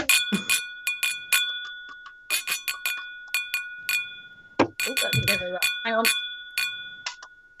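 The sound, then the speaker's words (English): A fire bell rings loud in rapid, uneven bursts, its sustained metallic tone hanging between strikes, with voices briefly talking underneath partway through. “What are you doing ringing a fire bell?”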